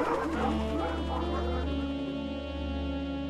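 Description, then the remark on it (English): A police dog barks in rough, overlapping bursts over a loud, steady mechanical drone on a bridge, the barking strongest early on and fading into the constant hum. “Canine, release.”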